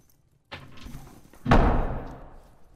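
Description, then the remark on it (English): A heavy door slams shut with a loud thud, preceded by a softer clunk of it starting to swing, then a brief rumbling decay. “That's the door slam.”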